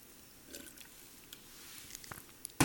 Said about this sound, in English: God damn, I can't talk. Let me drink some water.